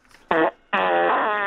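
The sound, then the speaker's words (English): A loud fart from a caller in Luton on a radio phone-in, in two bursts: a short blast, a brief gap, then a longer sustained buzzing rip with a steady rasping tone. “My recent explosion.”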